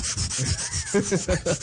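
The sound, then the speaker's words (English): A foot pump inflating an air mattress: quick, steady rasping whooshes repeat several times, with squeaky creaking tones joining the later strokes. No one speaks. “That's just him inflating it.”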